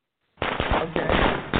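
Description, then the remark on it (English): A fireworks sound effect bursts in after a brief silence: dense, loud crackling with several sharp pops in quick succession, continuous to the end, with no voices. “The fireworks for me.”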